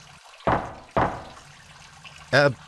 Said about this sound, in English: I didn't get that. Knock once for yes, twice for no. Understand?